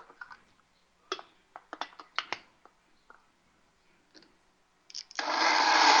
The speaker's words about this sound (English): Put them in the blender. So there we go. We put our black beans and our tomatoes in the blender. And away we go.